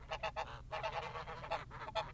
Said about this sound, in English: This isn't …. No, this isn't even …, it's Geese. That's not, these are multiple gooses. This is a flock of geese.